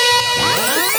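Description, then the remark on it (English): A loud rewind sound effect: a quick whirring swirl of sliding, warbling tones sweeping up and down for about a second, with no one talking. “Rewind.”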